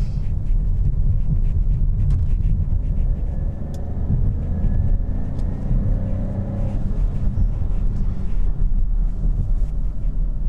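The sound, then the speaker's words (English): Steady, loud low-pitched drone of a 1.2-litre, 6-speed manual petrol car engine rated at 130 PS, heard from inside the cabin, with continuous road rumble and a faint rising engine hum, no voices. “It's a 1.2 litre engine, 6-speed manual petrol, which sounds a bit more like a diesel, but we won't dwell on that.”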